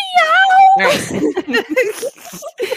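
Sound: cat crying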